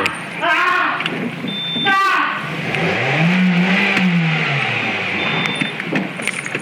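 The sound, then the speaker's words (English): A car engine in a played video revs up and down at mid volume as the driver sets the car up, its pitch rising and falling in a broad arc, with scattered chatter and background noise around it. “He's gonna zoom right through there? No, he's just, you know, setting the car up.”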